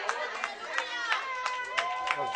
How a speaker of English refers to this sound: All the girls are clapping and all the guys are going, whoa, wasn't this Father's Day? You should have seen the guys. They all lost the sparkle in their eye for a moment.